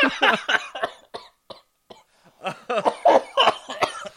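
A person coughs repeatedly up close in two harsh, loud fits separated by a short quiet pause, each burst raspy and rapid-fire, with no talking.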